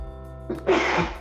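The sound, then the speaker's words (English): A single sneeze: a quick sharp intake of breath followed by an explosive, breathy burst that trails off, over a faint steady background hum with no talking. “Bless you.”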